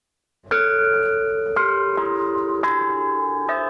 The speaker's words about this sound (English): In the Chu Ba Musicians Studio, presided over by Tan Jun, chime bells are the main instrument.